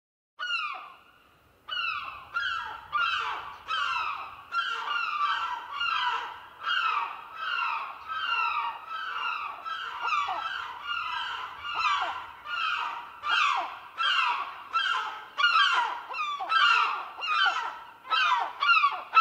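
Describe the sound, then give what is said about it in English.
A flock of seagulls calling nonstop, with loud, harsh, overlapping squawks and cries repeating in quick bursts throughout, no one speaking. “It's the greedy seagulls.”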